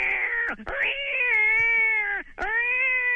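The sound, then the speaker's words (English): A cat, Sox (Sockington), a Twitter-famous cat from Massachusetts, meows loudly in long, drawn-out, yowling calls, three in a row with brief gaps, with no talking. “Why do you suppose so many people are interested in what a cat has to Twitter about?”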